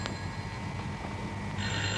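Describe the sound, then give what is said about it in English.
A telephone rings insistently in a flat, unanswered, its electronic bell tone continuing steadily with a brief renewed burst near the end, over a low background hum with no one speaking. “Whoever's ringing, they're very persistent.”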